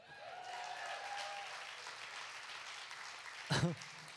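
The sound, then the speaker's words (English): A crowd claps in a steady, moderate wash of applause, with a brief louder burst near the end before it carries on, given as a courtesy clap during a church sermon. “Just going to give you a little courtesy clap.”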